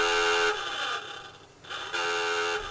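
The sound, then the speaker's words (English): A submarine's diving alarm, sounded by the officer of the deck to make the ship dive, blares: loud, buzzing klaxon blasts that rise and fall in pitch and repeat back to back, alone with no voices. “Whenever there was an occasion to call for the ship to dive, the officer of the deck would sound the diving alarm and yell, "Clear the bridge and dive, dive."”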